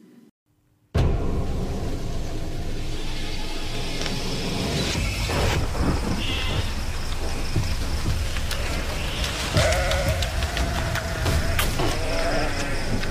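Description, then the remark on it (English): Heavy rain begins abruptly and pours down in a loud, steady hiss, with a few faint animal bleats and passing sounds scattered through the downpour. “And it's rain, Mr. Croup. Rain.”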